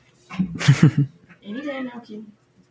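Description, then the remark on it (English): A short burst of human vocal sound comes first, then a single drawn-out cat meow, rising and falling in pitch, moderately loud before fading to quiet. “Take the cat with you, though. Come on, kitty. I love cats that respond. vocally.”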